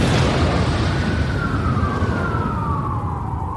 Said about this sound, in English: All of a sudden, an ambulance bursts through the doors and is driving right at us.